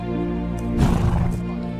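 A horse neighs in one sustained, harmonic whinny that swells louder partway through and then trails off, with no talking.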